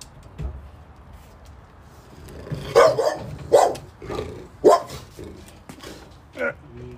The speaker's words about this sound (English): Oh, I think it's a seagull. I scared the shit out of me. I thought it was a dog. No, I think that's an owl.